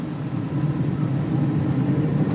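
An electric car-share car accelerating up to 25 miles an hour, heard from inside as a steady rumbling hum with a faint whir, holding a constant level throughout with no one speaking.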